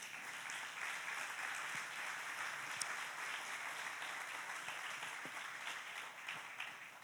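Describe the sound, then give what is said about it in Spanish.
Sustained applause for Jesus during a Spanish-language sermon, a steady dense wash of many hands clapping at even loudness for several seconds, with no voices rising above it. “Dar un aplauso a Jesús.”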